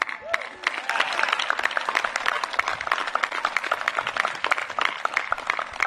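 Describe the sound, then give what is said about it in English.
A class claps steadily for several seconds, a dense patter of many hands with sharp individual claps standing out, lively throughout. “I would think you'd have an opportunity when I say that about the Navy to clap, but being here together.”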